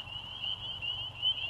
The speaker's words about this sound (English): Begin by listening for something you only hear this time of year. The first shrill of the spring peepers. That's your cue.